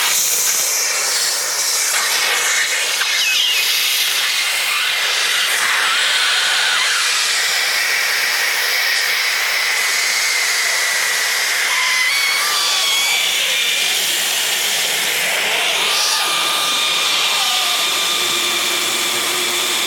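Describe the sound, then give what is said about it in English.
A 3-foot balloon is blown up with a long, steady rush of hissing air lasting the whole stretch, loud and unbroken, with faint squeaky tones sliding through it and no voices. “Trying to blow up the balloon.”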